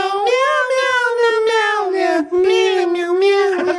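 Cat meows pitched into a pop melody, sung in a steady, nearly unbroken stream of tuneful notes with one brief pause; loud and close, with no talking.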